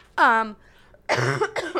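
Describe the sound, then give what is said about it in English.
A loud cough from a person with a sore throat: a short voiced bark, a brief pause, then a longer, harsher burst that breaks into two rough hacks. “Cough. Big cough.”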